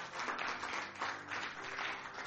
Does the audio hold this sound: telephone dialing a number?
no